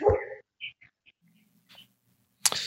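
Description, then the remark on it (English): A dog makes a few short, high whimpering and yipping sounds, with brief pauses and soft breathing between them, ending in a sharp burst of noise. “And his dog.”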